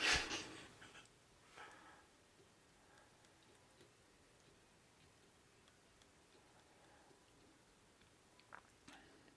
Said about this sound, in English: Now, judging by that cough, I think Winnie the Pooh's going to come out of it.